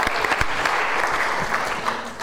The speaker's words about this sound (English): Give her a round of applause anyway.